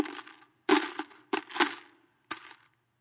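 Several bursts of clattering copper coins, three or four loud cascades of jingling and rattling, each dying away before the next, poured noisily into an offering box by rich givers, with no voices.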